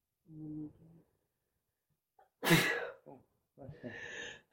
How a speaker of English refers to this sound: bless you. Bless you.